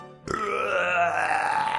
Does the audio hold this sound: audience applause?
no